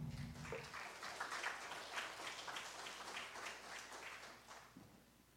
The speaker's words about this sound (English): We didn't have that at the early service. That's nice. We did get the applause, which was really nice too, so I do appreciate that.